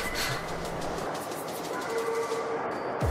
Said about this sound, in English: This is a Brooklyn-bound A express train. The next stop is Dyckman Street.